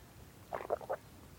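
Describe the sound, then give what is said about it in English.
A quick sip of tea: three or four soft, wet slurping and swallowing sounds in rapid succession, quiet against a low background hum, with no talking. “Quick sip of tea.”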